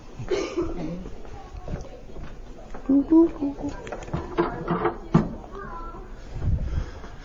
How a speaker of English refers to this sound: I'm gonna close this door. Hold on 1 second.